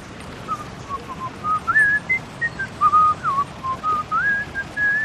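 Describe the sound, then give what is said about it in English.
A man whistles a wandering tune while walking his dog in a park, the clear pitched melody rising and falling in short phrases over a steady background hiss, continuous throughout. “Finally, W is for whistling.”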